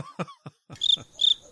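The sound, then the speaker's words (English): Two short, shrill cricket-like chirps, imitated by a human voice as a Foley sound effect, preceded by a few breathy, cough-like bursts and no speech. “If we're doing a Foley, then I could do like cricket sound, cricket sound, cricket sound.”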